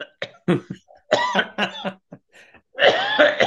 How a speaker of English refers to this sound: I'm not coughing because I'm emotional.